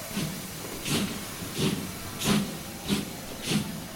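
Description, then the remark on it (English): A steam locomotive of the Walt Disney World Railroad at the Magic Kingdom chuffs steadily, six rhythmic bursts of hissing exhaust with low thumps beneath, like a train pulling away at a slow, even pace with no voices. “The Walt Disney World Railroad, now boarding for a scenic trip around the Magic Kingdom.”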